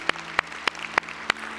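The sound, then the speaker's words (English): A church audience claps in unison after a prayer, giving Jesus a hand clap of praise: five sharp, evenly spaced claps in a steady beat, with a low hum underneath and no voices. “And everybody said, can we give Jesus a big hand clap of praise?”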